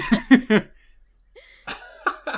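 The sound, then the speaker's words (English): A person gives a few harsh, rough coughs in quick succession, coughing back pipe tobacco smoke, then a short pause followed by more hacking, sputtering coughs. “As he's kind of coughing back some of that tobacco smoke.”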